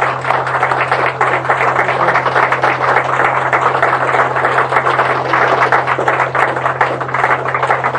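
A crowd applauds steadily for about eight seconds, a dense, even wash of many hands clapping at once, loud throughout without swelling or fading, over a low constant hum, with no one speaking.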